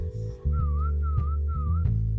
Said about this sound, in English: And hopefully people are hearing that whistle.